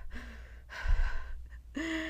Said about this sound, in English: Anyway, I'm like breathing heavy. I'm like, oh my God. Oh my God.